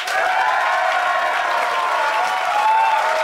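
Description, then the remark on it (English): An audience applauds steadily for a few seconds to vote for one side in a debate round, a dense, even wash of many hands clapping at once, with no voices standing out and no lull until the end. “But if you think Fanshawe and Ellis's arguments win the day, applaud now.”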